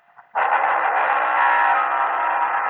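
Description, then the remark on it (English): After a brief quiet moment, a car engine suddenly roars up as the car speeds away on a dusty road, its tires kicking up a wall of dust, and holds a loud, steady, rushing drone, not fading, with no voices. “Dave Brasso was out the front by no more than 30 seconds, so as I ran toward my car and the wall of dust, his tires had kicked up”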